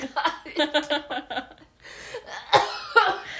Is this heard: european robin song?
no